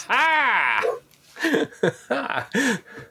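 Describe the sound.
A human voice imitates a dog, starting with a drawn-out howling whine and then letting out several short, loud bark-like yelps in quick succession.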